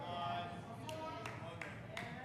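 One person claps four times at a slow, steady pace, the sharp hand claps fairly soft against a continuous low murmur of background noise.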